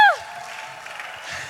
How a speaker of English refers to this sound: Let's give a hand of applause for tambourine.